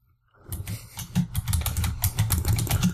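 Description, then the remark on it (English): Rapid, frantic clacking of a computer keyboard, dense keystrokes piling together in a steady flurry, fairly loud after a brief silent start, with no voices. “furiously typing. Furiously typing.”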